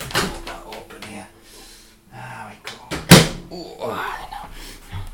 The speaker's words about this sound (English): Oh, nice, and have a sniff of that. That was me sniffing for you, because you can't sniff, because you're only listening.